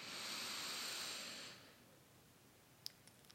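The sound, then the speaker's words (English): A soft, airy inhale drawn slowly through the left nostril, with the thumb blocking the right nostril, during alternate-nostril breathing, for about a second and a half, quiet, then fading into near silence with a few faint clicks. “Inhaling again through the left nostril.”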